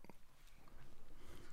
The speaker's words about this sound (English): First sip is happening.